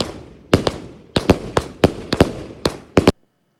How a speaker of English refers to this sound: Okay, I know what fireworks look like.